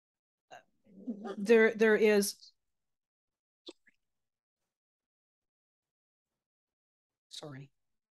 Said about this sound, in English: Yeah. My dog is growling. That's okay.